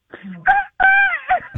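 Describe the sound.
A person's voice imitates a rooster crowing, a loud drawn-out cock-a-doodle-doo made of a few rising and falling vocal bursts, heard on its own.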